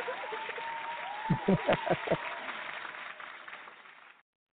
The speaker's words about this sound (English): All right, throw some clap on it.